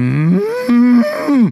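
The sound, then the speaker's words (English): A person imitates a cow, giving a loud, drawn-out moo of about a second and a half that swoops in pitch and wavers through a few bends before cutting off. “Although your cow imitation is very, very good.”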